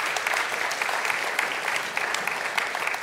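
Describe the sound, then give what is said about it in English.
A crowd applauds steadily for the people who are serving, a dense wash of many hands clapping at once, fairly loud and sustained throughout with no talking over it. “Yeah, clap for them.”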